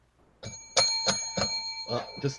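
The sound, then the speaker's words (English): A bell rings out about six times in quick, slightly uneven succession, each bright strike leaving a sustained metallic hum that carries through the whole sequence, fairly loud. “Guys, we're gonna get this bell.”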